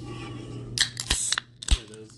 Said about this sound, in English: Let's go ahead and crack this caffeine.